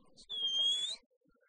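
A single high whistle from the mouth, held for under a second, its pitch dipping slightly and then rising at the end before it cuts off, with faint background noise around it.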